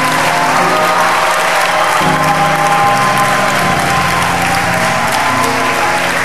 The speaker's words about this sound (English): Put your hands together one more time. A powerful hand clap.